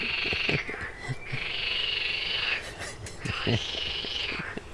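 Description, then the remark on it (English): Several frogs croak at once in loud, overlapping trilling bouts that swell and fade in waves, with shorter low clucks mixed in underneath. No one speaks. “That's some sort of frog argument.”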